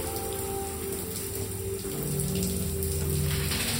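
Shower water pours in a steady, unbroken hiss with a faint low hum underneath, holding an even loudness throughout and with no voices.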